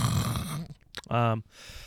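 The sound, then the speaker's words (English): A close, loud snorting breath right against the microphone, a short rough nasal snore-like burst, with brief voiced sounds before and after it. “Snored into the camera. Into the microphone again. Trying to breathe.”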